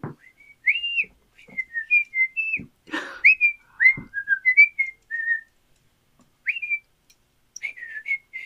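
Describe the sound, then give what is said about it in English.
A cook in a kitchen whistles a lilting tune while cooking, clear pitched notes sliding and trilling in short phrases with brief pauses, a few soft knocks and rustles underneath. “There are a lot of tables for a lot of people, and you can see there's a little tiny kitchen in the back, and you hear the sizzling of pans, and you can smell the aromas of food, and you just hear someone whistling away.”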